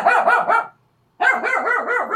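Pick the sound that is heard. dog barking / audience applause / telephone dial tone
dog barking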